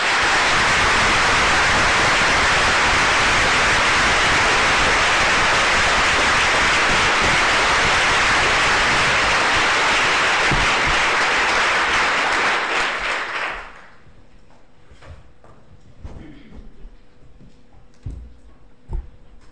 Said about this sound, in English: Big round of applause, really, for Professor Catherine MacKinnon.